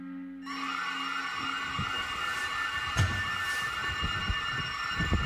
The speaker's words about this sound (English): Okay, so we've just been woken in the middle of the night by the sounds of an alarm. It looks like there has been a phone found in the house.